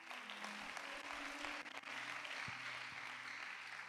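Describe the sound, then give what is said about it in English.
A crowd claps steadily, a dense, even wash of many hands striking together, with a faint low hum running underneath and no one speaking. “I like the way you are clapping.”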